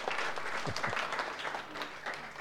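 An audience claps steadily for a couple of seconds, a dense, even patter of many hands with no voices standing out.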